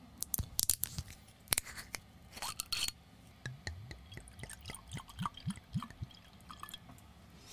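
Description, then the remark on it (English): Sharp clicks and crinkling of a bottle of nigori sake being opened, then liquid glugs into a glass in a series of rising, bubbly gulps as the sake is poured, with no talking. “So I'm going to go ahead and open this up and give it a pour.”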